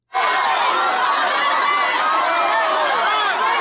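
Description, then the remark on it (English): A dense, loud, massive crowd of many voices yelling and screaming over one another at a man while pushing him around, starting abruptly and staying at a constant roar throughout, with no clear individual words. “There's one of the guys in the room, and he's literally getting pushed around by a massive crowd of people who are screaming at him and trying to hurt him.”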